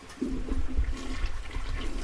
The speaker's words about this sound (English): Can I get you to hold on 1 second? Yeah, I'm flushing the toilet to see if it go down. Ah, it's coming up.